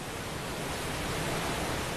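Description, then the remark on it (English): A steady, broad rush of ocean water and breeze as a cruise ship ploughs up the Mozambique Channel in the Indian Ocean at about 20 knots on a glorious day, with white horses over the swells. It is continuous, with no distinct breaks or voices. “the cruise ship, the MSC Sinfonia, as it ploughs up the Mozambique Channel at a good 20 knots”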